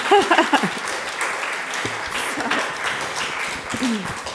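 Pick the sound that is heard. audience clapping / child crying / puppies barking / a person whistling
audience clapping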